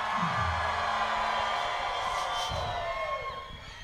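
A large concert crowd in Memphis screams and cheers in a steady, roaring wash of voices that holds for several seconds, with occasional higher whoops, then eases slightly toward the end.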